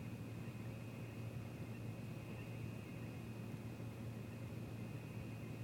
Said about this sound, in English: Well, it's like one of those white noise tapes, you know, or white noise apps.